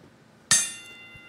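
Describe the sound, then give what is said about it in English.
A single bright strike of a bell rings out after a short quiet pause, its high metallic overtones shimmering and slowly fading over the next second with no talking. “Ring that bell.”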